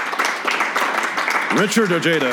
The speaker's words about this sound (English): So should we put it to a vote? Beto O'Rourke, please clap.